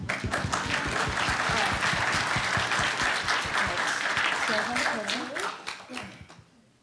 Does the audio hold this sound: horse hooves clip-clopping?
no